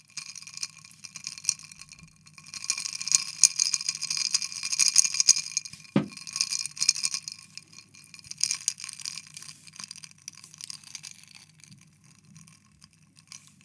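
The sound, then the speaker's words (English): Ice cubes rattle and clink against a glass in a continuous jostle, with one sharper knock partway through and a faint low hum underneath. “Ice cubes.”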